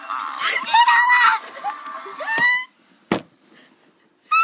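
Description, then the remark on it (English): A child who fell off a ride screams and wails loudly in long, rising cries while kicking on the ground, over a noisy crowd, followed by a sharp bang and a few more shouts at the end. “There is a child in the background that fell off of a ride and is kicking and screaming on the ground.”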